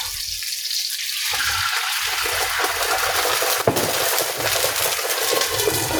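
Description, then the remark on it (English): Wine splashes into a hot pan with seared, flipped salmon for a homemade Salmon Oscar, on a burner at medium heat, setting off a loud, steady hissing sizzle that runs the whole way through, with one brief sharp pop partway in. No one speaks. “Now I'm going to put the wine in there.”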